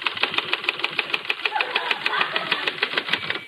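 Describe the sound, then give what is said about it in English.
Rapid typewriter typing as someone bends over the typewriter at a desk to show how typing is done: a fast, steady run of sharp mechanical clacks repeating for several seconds, fairly loud, with no voices. “See, you just bend over the typewriter like this, and you go...”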